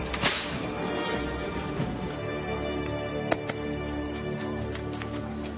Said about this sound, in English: Then they put a purple robe on him and came to him and said, "Long live the King of the Jews." And they went up and slapped him.